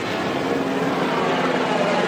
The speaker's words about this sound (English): And military helicopters are flying above.